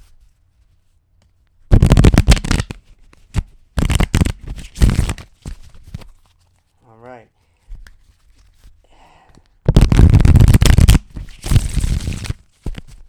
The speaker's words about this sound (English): I'm gonna shuffle the cards. Hold on. I'm gonna shuffle the cards.